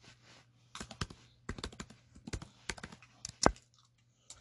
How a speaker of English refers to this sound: Yeah, hold on. Let me give you some typing ASMR real quick.